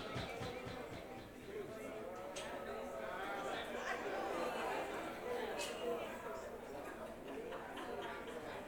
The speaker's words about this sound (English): The mumbling and the rumbling. This is the most rumbly-ass crowd we've had on this whole tour.